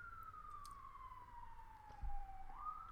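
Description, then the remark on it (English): An emergency vehicle siren wails steadily from a street in Baltimore City, its tone slowly sliding down and then rising again, set against a low rumble of city traffic. “Y'all hear the sirens.”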